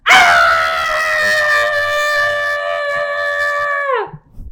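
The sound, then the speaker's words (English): A person imitates a man screaming: one loud, sustained, strained yell held for about four seconds before breaking off abruptly, with no other talking. “That was the man screaming.”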